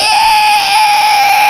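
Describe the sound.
A voice imitates a screeching New York subway train, the A train, with a loud, steady, high-pitched squeal that holds one piercing note for about a second and a half without a break.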